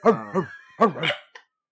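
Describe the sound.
A man barks out a few loud woofs in imitation of a dog, two quick ones, a pause, then another pair, ending with a short clipped sound.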